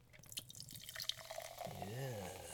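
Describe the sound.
Beer glugs from a very full can of Salt Flats beer into a glass, a steady pour with fizzing splashes. A brief murmuring voice joins toward the end.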